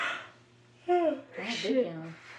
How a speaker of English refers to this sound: Big yawn. Huh? Big yawn. Man, I'm tired in the motherfucker, man. I can't wait to go to sleep.